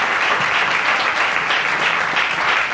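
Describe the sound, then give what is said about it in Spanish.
Loud, sustained audience applause given to the Father, the Son and the Spirit, a dense wash of many hands clapping steadily without pause for the whole stretch, with no voices rising above it. “Denle un aplauso fuerte al Padre y al Hijo y al Espíritu.”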